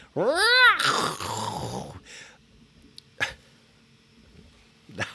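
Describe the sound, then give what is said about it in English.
A voice imitates a car crash: a loud, high squealing screech that rises and falls, then a rough, noisy crunch, followed by a few short breathy bursts and quiet gaps. “That was my crashing car sound, you guys.”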